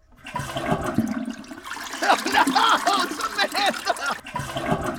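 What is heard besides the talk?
toilet flushing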